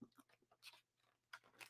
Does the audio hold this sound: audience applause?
no